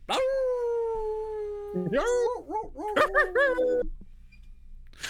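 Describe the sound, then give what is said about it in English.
A person imitates a coyote with one long, sliding howl that fades, then breaks into a quick run of warbling yips and yelps, loud, before stopping abruptly. “Or based on the sounds that the coyotes made where I used to live.”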